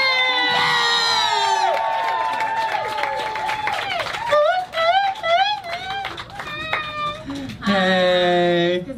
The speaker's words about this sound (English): Everyone, start clapping in a big way. Big, big, big.